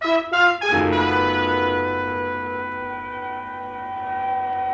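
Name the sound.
ambulance siren arriving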